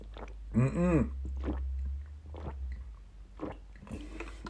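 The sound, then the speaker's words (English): Someone gulps down a glass of water, trying to drink a third of it, in a series of wet, irregular swallows and throaty glugs, with a brief tonal throat sound early on, over a steady low hum and no talking. “I glugged it then. I did a greedy guts glug.”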